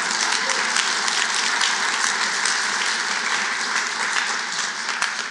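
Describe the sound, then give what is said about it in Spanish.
An audience bursts into loud, sustained applause, a dense steady wash of many hands clapping at once that holds evenly for several seconds with no talking over it. “Dáselo fuerte.”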